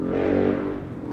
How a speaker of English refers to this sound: Got a loud motorcycle over there in the distance.